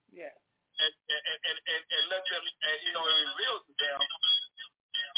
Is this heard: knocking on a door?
no